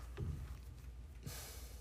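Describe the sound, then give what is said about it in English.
A single sneeze: a short sharp intake, then a loud hissing burst of breath that trails off into airy noise. No one speaks. “Bless you.”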